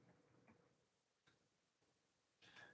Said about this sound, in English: Again, I'm typing underneath my microphone, so I don't know.